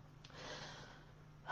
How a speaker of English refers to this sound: Being in the breath is the best way to be fully present. So that just means breathing in and breathing out. And I actually invite you to do this with me right now.